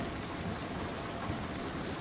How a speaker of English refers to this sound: It's like being on the North Sea or something on a trawler. It's coming in sideways. I just grabbed my recorder because there's a big old storm brewing on the horizon.